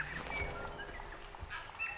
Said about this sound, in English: They have completely different birds here. I haven't seen a single robin.